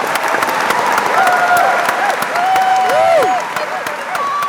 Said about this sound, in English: So let us give these talented winners a round of applause.